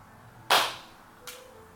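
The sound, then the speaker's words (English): A single sharp, loud hand clap, made to sync the audio at the start of a recording, rings out once with a quick fading tail, followed by a much softer second snap a moment later; otherwise quiet, with no talking. “We got to clap with noise.”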